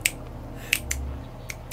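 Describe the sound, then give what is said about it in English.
A voice imitates the light clicking that woke someone in their room at night: about five crisp, short clicks at uneven intervals, quiet, with a faint low hum beneath and no speech. “I was woken up by the sound of light clicking.”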